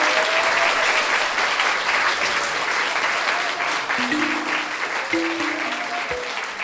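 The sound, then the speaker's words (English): Sustained applause from an audience at a live storytelling event, applauding the helpers and themselves, steady and fairly loud for the whole stretch, with a few brief voiced calls or tones rising over the clapping near the end. “Big round of applause for all the lovely helpers today, and for yourselves.”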